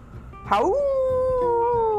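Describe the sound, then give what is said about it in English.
A person imitates a wolf howling a call to its pack: one loud, sustained call that swoops upward, then holds a steady wavering tone until the end, with no other talking. “Howl! Oh, oh! The pack returned his call and stood at attention in a circle.”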